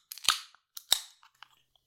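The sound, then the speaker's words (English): Two beer cans, a big 440 and a small can, crack open one after the other, each a sharp snap followed by a short fizzing hiss, then a few faint little clicks trail off. No one speaks. “We'll crack them open.”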